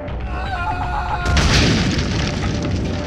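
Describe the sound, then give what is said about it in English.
A sustained tonal hum gives way to a sudden loud boom of wooden doors blasting open and ripping off their hinges, followed by a dense wash of crackling, splintering wood shards that keeps rumbling on. “Scorpio came blasting through them as they're shot out of a cannon, wood shards scattering from the doors, ripping off their hinges”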